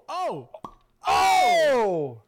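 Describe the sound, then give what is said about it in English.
A single sharp pop of a cork coming out of a wine bottle opened with a screw and a hammer, brief, between a short voiced exclamation and a long, loud, falling cheer. “It's almost like you think this is my first time opening a bottle of wine with a screw and hammer.”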